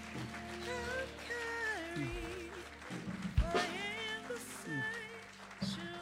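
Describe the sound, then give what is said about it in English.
A church audience claps steadily in praise of God in a dense, crackling wash of applause, mixed with sustained organ-like music and voices in the church sanctuary. “Come on, clap your hands and give him praise.”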